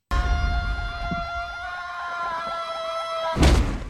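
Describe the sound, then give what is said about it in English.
A long, sustained, high-pitched scream from a movie death during a long fall, from Buffy, holds a steady pitch for about three seconds, then cuts off with a sudden heavy impact. No talking. “That was a long fall for Buffy, yeah.”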